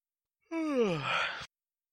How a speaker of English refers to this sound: Oh, that's freaking yawn. So we're obviously boring … here.